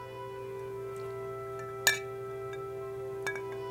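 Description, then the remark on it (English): A single bright clink of glasses touching in a toast, ringing briefly, followed later by a fainter second tap, over a steady low hum with no one talking. “Wait, give me one more cheers.”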